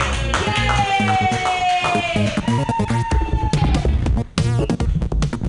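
An audience claps steadily, a dense patter of hand claps carrying on for several seconds, mixed with loud sustained whoops and cheering voices that rise and fall in pitch.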